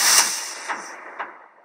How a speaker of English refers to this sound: And I am in the squeaky chair at present, if you can hear it.